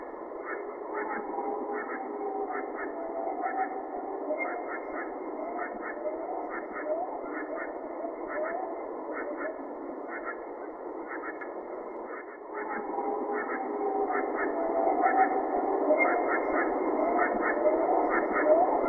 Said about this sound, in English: We also capture from that particular Zoom recorder the following. In this clip, you can hear the tree frogs in the foreground, but listen behind them. There's a howl and honestly what sounds like chatter.